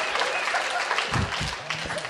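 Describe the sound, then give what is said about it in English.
Steady audience applause, a dense crackle of many hands clapping at a fairly loud, even level, with a low voice briefly murmuring underneath toward the end. “Why aren't you clap? Okay, good.”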